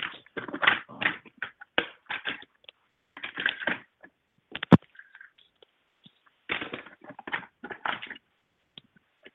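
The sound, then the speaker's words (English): Someone rummages through a pile of pens, trying to find one that works, with bursts of plastic clattering and rattling, a sharp click partway through, and short quiet pauses between handfuls. No one speaks. “I know, I got a bunch of pens and none of them were right.”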